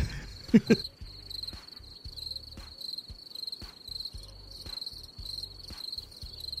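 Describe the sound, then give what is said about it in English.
Crickets chirp steadily in a continuous high-pitched trill, with a soft rhythmic pulsing underneath and a brief bump of noise near the start. “Or I'll just cricket.”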